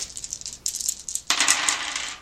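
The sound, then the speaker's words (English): Five dice rattle and click together for about a second, then spill out in a bright, dense clatter that settles quickly, rolled for a sanity roll. Fairly loud, with no talking. “Alright, so I will now attempt a sanity roll.”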